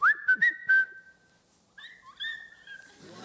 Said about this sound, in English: So I can tell if he's in the room because I'll just whistle and he'll just whistle back.